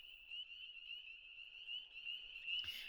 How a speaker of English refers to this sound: The wind falls. The mountains are clear. Now the frogs.